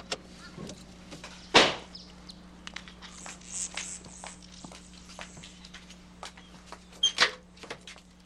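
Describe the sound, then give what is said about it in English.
Big metal security gates at a house slide open after a code is punched in, with a steady low motor hum, a sharp clank near the start and another toward the end, and scattered rattles and scrapes in between, as a car waits to drive in. “Metal doors slowly parted, and we drove in.”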